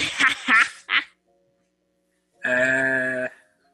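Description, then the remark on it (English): A chicken gives three quick squawking clucks, falls silent for a moment, then lets out one longer, drawn-out nasal call, fairly loud with no talking. “Your chicken audio.”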